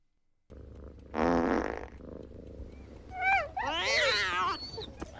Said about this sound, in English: You know this fart. I think Jim Carrey was actually like quoting that fart when he was doing it his time.